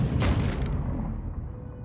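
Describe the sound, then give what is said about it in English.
A heavy, muffled impact booms against a sailing boat's hull underwater, one deep thud followed by a lingering low rumble that slowly fades, loud with no voices; the strikes lift the boat bodily out of the water. “Huge strikes hit the boat underneath the water.”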